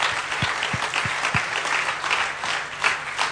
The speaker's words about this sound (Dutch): Come on, let's give all these guys a hand. Laten we al deze mensen een applaus geven. Geweldig.